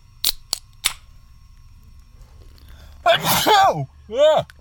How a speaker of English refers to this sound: Bless you, sneeze bitch.